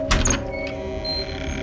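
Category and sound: household object, door creaking open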